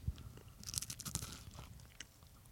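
Crisp crunching of crunchy chocolate candy being chewed right by the mic, a burst of sharp brittle crunches followed by softer, irregular munching with no talking.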